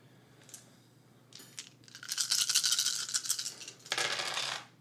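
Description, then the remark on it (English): Six dice are rolled for a haunt roll, rattling and clattering in a few bursts: a brief shake, then a longer, dense stretch of tumbling clicks, and a final sharp scatter. No one speaks. “So take 6 dice and roll it and try to beat 2 because we have 2 haunts.”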